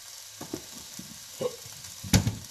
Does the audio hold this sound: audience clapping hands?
no